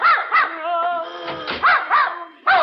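A dog barks in a quick run of sharp, high yips, then lets out a drawn-out whine before barking again several more times, loud and alone with no talking.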